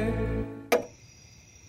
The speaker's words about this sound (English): Hey, it's 3 a.m. and the ticking clock seems as loud as a jackhammer,